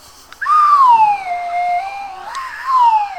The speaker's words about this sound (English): Notice there's a quiet bit here, so I'm going to play my slide whistle.